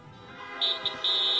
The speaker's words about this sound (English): If you have your Bibles tonight, give a honk.